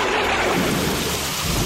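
Steady, heavy rain hisses across the whole clip while a deep rumble of thunder rolls underneath, loud and continuous with no voices.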